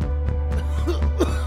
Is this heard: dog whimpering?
no